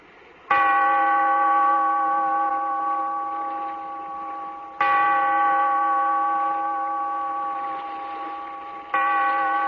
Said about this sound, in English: Bellkeeper, toll the bell, so that all may know we are gathered again in the Weird Circle.